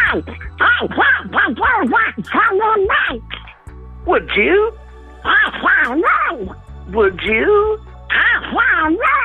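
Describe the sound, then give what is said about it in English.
A person speaks in a raspy, nasal duck-like quacking voice as the character Ronald Duck, several garbled bursts in a row, loud, with a steady low hum underneath. “Limited material I've got for Ronald Duck, but...”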